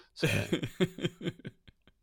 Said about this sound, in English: That's that moment where you find you've actually really got to clear your throat, but it's going to sound like you're hamming somebody, yeah, and then you don't know what to do.